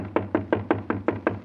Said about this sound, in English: So I guess we'd better knock and see if anybody answers. Go ahead, Jonathan Thomas. Knock on the door.